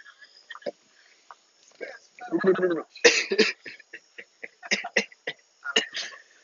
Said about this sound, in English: Sorry, they're spitting on your porch.